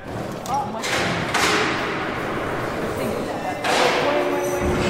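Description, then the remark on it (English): Heavy metal jailhouse doors clang shut twice, a few seconds apart, each bang echoing and ringing off. A steady low jailhouse hum and faint indistinct background noise continue throughout. “The detectives listen to the clanging doors, the ever-present jailhouse hum, and wait for the guards to bring Joseph in.”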